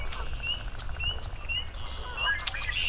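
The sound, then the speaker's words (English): A dense outdoor chorus of leopard frogs and spring peepers, with shrill, evenly spaced peeps rising over a steady grating, pulsing background and a low wind-like rumble, without speech. “Lots and lots of leopard frogs. A few spring peepers as well.”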